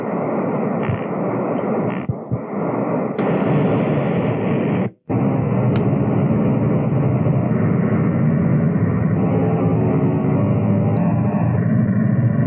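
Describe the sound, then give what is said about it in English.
A beach wave field recording heavily processed through circuit-bent glitchy effects becomes a dense, continuous roar of distorted noise, with a few sharp clicks and one abrupt brief dropout partway through. No one speaks. “I'm putting in essentially just beach wave field recording right now, which is essentially white noise.”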